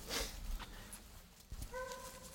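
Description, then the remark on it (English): Hunting hounds on a trail in the woods bay in the distance, faint and echoing, ending in a long drawn-out howl, with rustling and scuffling noises earlier. No one speaks. “different personalities, attitudes, voices. Yeah. When they really get it warmed up hot, that's all you hear.”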